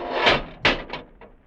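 Doors closing: a soft thump, then a sharper clunk followed by two fainter knocks, each quieter than the last, with no voices.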